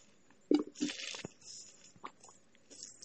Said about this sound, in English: Sorry, I'm getting a little cotton mouth. Need to give me some of my little sip of my iced coffee right quick, man.